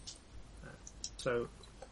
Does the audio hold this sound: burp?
no